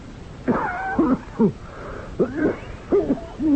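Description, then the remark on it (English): A harsh, wheezing cough from Professor Valdemar comes in about five strained bursts, each with a raspy, whistling, almost groaning voiced edge, separated by short ragged breaths. “That's a wicked cough, Professor Valdemar.”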